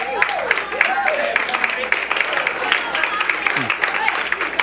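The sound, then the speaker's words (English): A crowd claps steadily throughout, a dense patter of many hands mixed with scattered cheers and voices rising and falling over the applause. “Y'all clapping now.”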